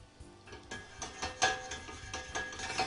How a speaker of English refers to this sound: So my onions now are starting to sizzle. It doesn't take very long, maybe 4 to 7 minutes to get to the point where your onions are soft enough to add the rest of the ingredients.